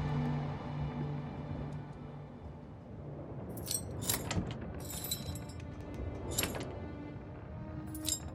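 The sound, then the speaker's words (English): A ring of keys jingles in a few bright, metallic bursts: a cluster midway through, then single shakes near the end, over a low steady background hum with no talking. “I can't believe you stole his keys.”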